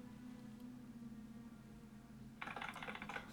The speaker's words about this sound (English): They've got some old IBM keyboards. Lots of springs. Lots of mechanical clickiness.